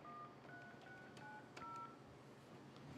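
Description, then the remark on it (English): A rapid series of short electronic beeps from a telephone keypad as a phone number is dialed, several distinct tones pressed one after another over a steady background hiss, clear. “It's been a while since I had to actually dial a number.”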